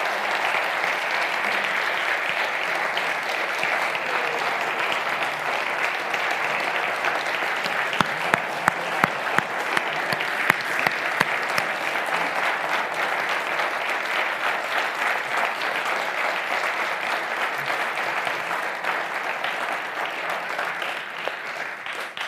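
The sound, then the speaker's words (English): Sustained applause from a large audience for a group thanked for sharing, a dense steady wash of clapping that holds at an even loudness for over twenty seconds, with a few sharper individual claps standing out partway through. “Can you give them another round of applause?”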